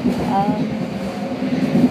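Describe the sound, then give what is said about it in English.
Steady rumble of a new-style BART rapid transit train in motion, heard from inside the car, with a faint electric whine rising and fading over the continuous low roar. “It feels like I'm altogether different place just because the BART has changed.”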